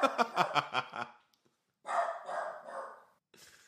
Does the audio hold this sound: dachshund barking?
yes